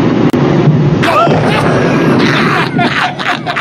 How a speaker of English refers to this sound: Wow, that's just that's a massive explosion. Whale pieces are flying. You can see them go in front of the camera. Whale pieces are flying all over. People are ducking, running for cover.